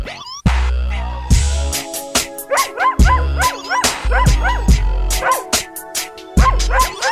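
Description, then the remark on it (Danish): Loud, rhythmic dog barks repeat in quick bursts, set against a thumping beat and music, as if the barking were woven into a song. “Men det er en liderlig hund, det er det.”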